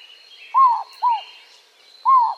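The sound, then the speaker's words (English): A white-winged dove gives three clear, hooting coos, two in quick succession and then one after a short pause, with faint high twittering from other birds in the background. “White-winged doves.”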